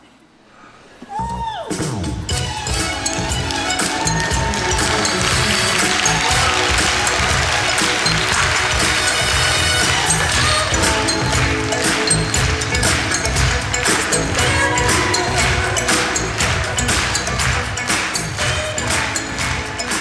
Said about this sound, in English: Hundreds of people stood up and clapped along and danced in their seats.